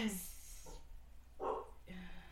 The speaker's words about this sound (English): Oh. Dog barked. That's weird.